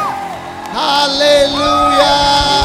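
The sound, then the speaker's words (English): A crowd of voices shouts "Amen" together in a loud, sustained collective cry, with rising and falling tones swelling over about two seconds, energetic. “And everyone shouted, Amen.”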